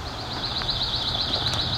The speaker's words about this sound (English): Possibly a worm-eating warbler song.